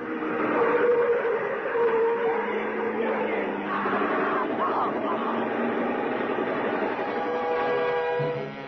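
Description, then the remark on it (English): A car engine roars steadily, with a dense, rattling burst of machine gun fire running through the noise for several seconds before it eases off; the machine gun is fired out of the car's window at a huddled figure. “The darts of flame from the machine gun thrust out of the car's window at the huddled shape.”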